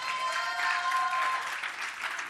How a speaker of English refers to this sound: I thought you'd clap your hands by now.